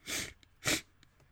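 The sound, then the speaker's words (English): Two sharp, hissy sniffles in quick succession, the first slightly longer, followed by a couple of much fainter little sniffs. No talking. “Once again, listener, I'm sorry I keep sniffling.”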